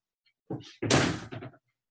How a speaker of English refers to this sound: Sorry, just the door's opening.